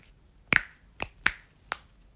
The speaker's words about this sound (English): That's why it sounds different for everyone, because the size of their fingers and their palms is different than another person's. So you could both snap at the same time, but tell two people are snapping because you hear two different sounds.